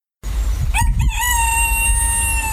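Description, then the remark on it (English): A cockerel crows loudly, one long sustained call with a rising, strained start that holds steady to the end, over a low rumbling background. “here, performing exclusively for the very first time on the podcast, is my cockerel doing the theme from Stingray”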